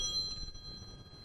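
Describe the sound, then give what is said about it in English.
A cell phone rings with a thin, high electronic tone, steady and bell-like, held for about a second. It sounds fairly quiet against a low background rumble. “Please turn off your cell phones.”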